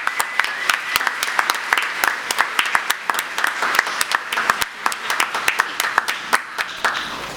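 An audience at a morning worship service applauds steadily for about seven seconds, many hands clapping in a dense, crackling patter with no voices breaking through.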